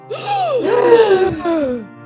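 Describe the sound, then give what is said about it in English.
A voice imitates an audience's shocked gasp, one sharp intake sliding into a drawn-out, wavering groan that rises and falls for about two seconds, fairly loud, with no other sound. “Yes, gasp your breath of air, for there be not much left.”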